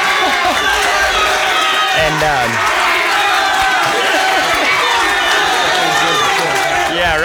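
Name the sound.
crowd cheering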